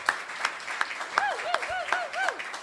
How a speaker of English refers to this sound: And I really want to thank the Livery Stables here in Pleasant View, Tennessee. If you ever are, yes, big round of applause.